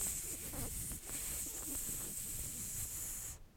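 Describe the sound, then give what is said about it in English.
Steady, dense sizzling of bacon frying, a bright continuous hiss with crackly pops scattered through it, holding at an even level before cutting off abruptly near the end. “That's the bacon cooking.”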